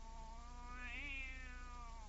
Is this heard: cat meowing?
yes